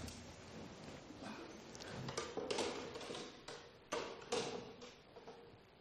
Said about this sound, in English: Could you just shift those chairs?